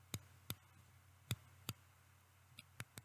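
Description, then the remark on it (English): The dial of an adjustable single-edge injector razor, which adjusts from 1 to 6, clicks through its settings: about seven crisp clicks at uneven intervals, with a faint low hum underneath and no talking. “That's kind of a clicking through the different levels.”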